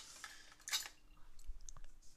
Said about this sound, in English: So, yeah, what I'm doing is now I'm just giving things a rinse, making sure there's no food stuck on them, and loading my little countertop dishwasher.